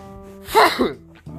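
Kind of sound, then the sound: human body sound, sneeze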